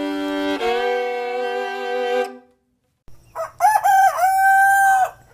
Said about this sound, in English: every morning from one of her favorite happy places, her chicken coop, along with all her chickens.